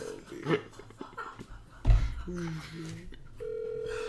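An outgoing phone call's ringback tone: a few short electronic tones chirp, then a steady, clear ring tone holds through the end, moderately loud over low background noise and a thump.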